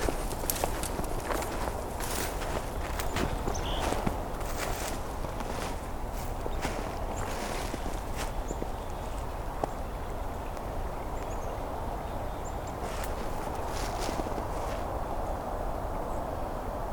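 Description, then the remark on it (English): Steady footsteps crunch through leaf litter at a walking pace as someone steps into a small woodlot in a valley next to a creek, fairly loud, with faint bird calls in the background, including black-capped chickadees, and no talking. “Stepping into a small woodlot now.”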